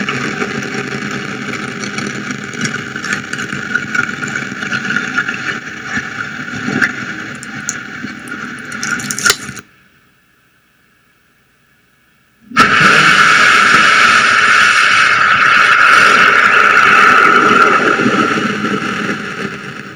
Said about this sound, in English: This video that I am about to show you is the most recent rocket that was launched in Virginia, in the Eastern Shores, and they were carrying 7,400 pounds of supplies. That was May 21st.